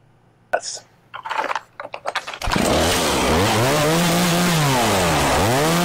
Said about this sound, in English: He didn't even do it. He couldn't even chainsaw a mask correctly.